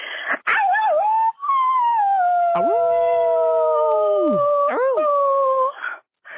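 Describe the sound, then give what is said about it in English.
A dog howls in long, sustained wavering notes that rise and bend in pitch, with a brief yip-like break midway, fairly loud with no talking. “Howls upon howls and bowls after bowls.”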